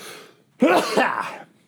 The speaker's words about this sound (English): Yes. No editing or muting on that. I wanted you all to enjoy that sneeze.